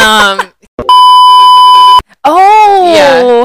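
A loud, steady censor beep holds one mid-high pitch for about a second, cutting off a voice mid-word; talking resumes right after the tone stops.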